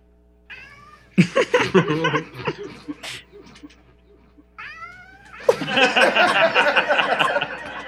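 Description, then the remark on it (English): A voice imitates a yowling cat in two loud, drawn-out bursts, each rising into a strained, wavering caterwaul, with a short quieter gap between them. “There's a dire cat roaming these caverns. I can clearly hear it.”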